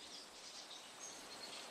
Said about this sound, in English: What do you mean, pump it up? We're in the forest. Just pump up us in the forest. Hey, birds! Hey, birds, louder! Turn that waterfall. Hey, water! Alright. That's better.